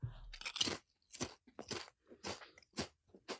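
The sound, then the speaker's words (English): Crisp crunching of a Pringles potato chip being chewed, with a series of sharp, irregular bites and crackles spread over a few seconds, no talking. “So I'm going to now put one of the Pringles in there.”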